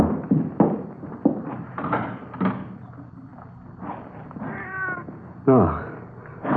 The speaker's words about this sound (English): It's just a cat out in the street, you know, out in the side alley, maybe, huh? Mm-hmm. Probably not even in the house.